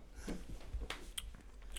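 Someone takes a quick sip of a drink up close, with a few soft wet mouth clicks and a faint slurp, quiet and with no talking.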